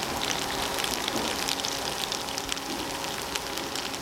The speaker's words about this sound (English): As the dumplings are frying, we're getting that really nice browning on the bottom. And then when we add the water, we're turning our frying pan into a steamer.